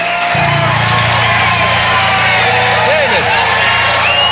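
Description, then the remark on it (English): A large crowd cheers and roars continuously, loud and dense throughout, with scattered whoops and clapping mixed into the steady wash of noise. “Listen to the crowd loves them.”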